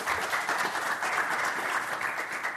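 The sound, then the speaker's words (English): An audience applauds a panel on the Michelle Meow Show, a dense, continuous wash of clapping that stays at an even, fairly loud level throughout with no voices standing out. “And another round of applause for our esteemed panel today sharing this afternoon with us.”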